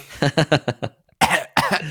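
A mild cough: a quick run of five short, soft coughs, a brief pause, then two longer, breathier coughs.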